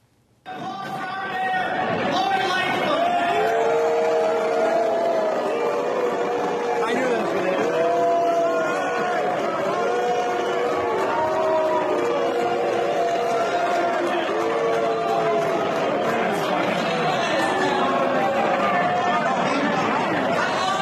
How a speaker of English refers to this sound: Mayor Lightfoot booed off the stage, the plumbers in this case.